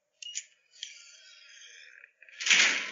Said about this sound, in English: It's two doors that close automatically, so he can shut everybody out, just for the record. She had it installed over the weekend.